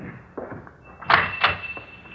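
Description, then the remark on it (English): A door opens, with a thin creak running through it and two solid knocking bumps as it swings, over a faint rumbling background. “Okay, Pop, open the door like before.”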